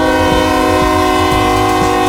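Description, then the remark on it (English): A train horn blares loud at a railroad crossing in one sustained, steady chord, with low rumbling and faint rhythmic thumps from the moving train underneath. “You hear it, the train just blaring its horn.”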